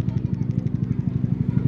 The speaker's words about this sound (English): Where's this helicopter? There. Look at how far it is. There. Huh? It's making so much noise. You see how far it is, and it's making so much noise.